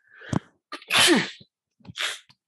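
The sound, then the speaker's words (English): A person sneezes loudly: a quick catching breath, then an explosive, spraying burst, followed by a shorter breathy puff as they recover. No talking. “finally sneezed, was coming.”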